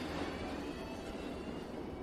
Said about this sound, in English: Riding the train home.